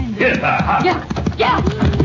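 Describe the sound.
Horse hooves clip-clop in a quick, steady rhythm while voices carry on over them.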